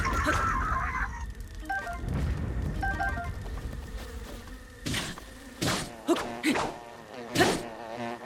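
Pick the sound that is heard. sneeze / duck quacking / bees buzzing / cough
bees buzzing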